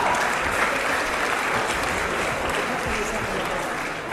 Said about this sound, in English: Could I please ask the members of the audience to please refrain from clapping and making any noise while the debate is going on? Now, I ask you very quietly and politely to do so.